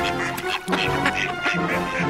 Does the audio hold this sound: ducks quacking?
yes